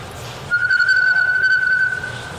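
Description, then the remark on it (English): A person whistles a bluebird-like call: a single clear, high note held steadily for about a second and a half, fairly loud over a low background rumble. “Bluebird of happiness.”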